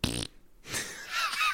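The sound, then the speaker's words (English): A fart rings out alone: a short buzzy blast, a brief pause, then a longer airy, sputtering hiss that trails off. “We're gonna end our Mike Myers series on a disgusting, rancid fart.”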